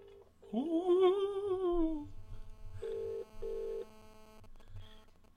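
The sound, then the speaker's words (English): A phone line's ringing tone, from a call placed on speakerphone, sounds as two short, steady beeps in quick succession, like a double ring, following a brief sliding tone, with a low hum underneath and no one talking. “phone in Mike. He's not gonna pick up his phone.”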